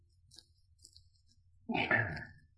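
Drinking glasses clink together in a toast in an apartment in Paddington, a single bright clink with a brief ringing tail, preceded by a few faint taps and handling sounds.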